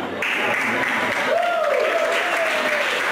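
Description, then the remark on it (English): An audience applauds steadily after a remark about parents and raising a good kid, a dense, even wash of clapping that holds at a strong level throughout, with a rising and falling whistle cutting through partway. “Statistically, too many of you are applauding, but it takes more effort to order a pizza than it does to have a child.”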